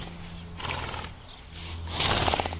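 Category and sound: animal, horse neighing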